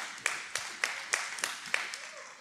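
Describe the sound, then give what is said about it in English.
An audience claps in a steady rhythm, sharp synchronized claps landing about three times a second over a continuous wash of scattered applause, moderately loud with no voices. “You can clap.”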